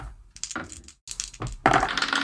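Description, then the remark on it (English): Dice rolled by several players for an Act Under Pressure roll rattle and tumble across a hard surface in a few short bursts of sharp clicks, ending in a louder, denser clatter, with no one speaking. “Roll Act Under Pressure, everybody.”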